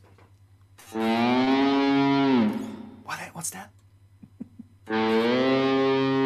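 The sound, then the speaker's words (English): A distorted electric guitar imitates a cow's moo with two long, loud, sliding tones, a brief spoken question heard between them. “That's a cow.”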